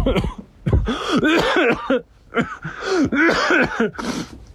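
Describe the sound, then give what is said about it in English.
Rough coughing in several raspy bursts, a few quick hacks at a time with short pauses between, loud and throaty with no other sounds around it, from a person with a Kumbu cough at camp. “Of this fucking kubu cough thing as well.”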